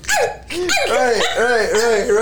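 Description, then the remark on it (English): A person's voice imitates a small dog, letting out a rapid string of high, yappy barks, loud, with no pauses between the yips. “you called me a little chihuahua, it was that scene from Coming to America where he's like bark like a dog”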